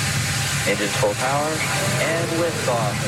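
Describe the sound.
A steady, loud roar of nine Merlin rocket engines at full power as a Falcon rocket lifts off with a Dragon capsule carrying a multinational crew to the International Space Station, a dense rushing rumble, with a voice speaking over the top of it.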